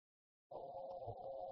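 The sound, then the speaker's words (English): After a half-second of silence, a steady, hollow audio echo kicks in, a sustained ringing feedback drone from a call participant who has unmuted their microphone, holding at an even level with no one talking. “Oh, we've got an echo now.”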